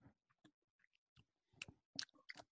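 Someone takes small sips of a spiced simple syrup made with cinnamon, with a scatter of soft lip smacks and wet mouth clicks, a few louder slurps near the end, and no talking.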